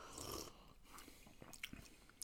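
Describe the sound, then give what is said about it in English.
A quiet sip from a glass of vodka, followed by a few soft wet mouth clicks and a swallow, with no one talking. “Okay, I'll sip it.”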